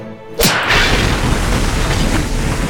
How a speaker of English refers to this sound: Looks like you put him through the wall.